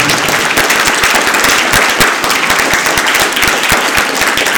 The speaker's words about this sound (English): So thank you very much for coming today. Can we give a big round of applause for our participants?